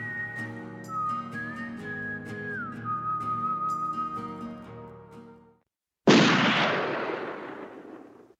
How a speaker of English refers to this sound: The gunshots echoed throughout the hills. The lawmen were hunkered down in a gulch with their rifles, defending their position. From the top of a red sandstone hill, the outlaw shot back with a stolen six-shooter.